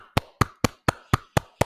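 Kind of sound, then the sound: crowd, round of applause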